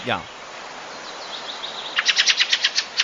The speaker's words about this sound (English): It was a field fare. Oh, field fare.